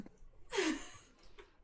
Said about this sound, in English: Poor yawning boy. It's too early.